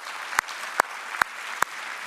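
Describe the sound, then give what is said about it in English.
An audience applauds in a dense, steady wash of clapping, with four sharp, evenly spaced claps standing out in a regular rhythm. No one speaks. “We can cheer that on.”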